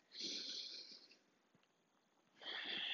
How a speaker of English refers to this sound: Let's take a deep breath wherever you are.